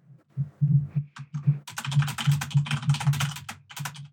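Rapid, dense typing on a computer keyboard, a fast clatter of keystrokes that grows busier and louder after the first second and a half, close by with no talking.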